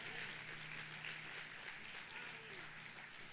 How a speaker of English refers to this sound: If you've got that blessed hope, can you just give the Lord a hand clap of praise today?